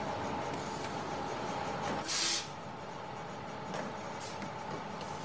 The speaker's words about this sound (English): Now, just bear with me a moment. I'm just about to board the Arneson bus.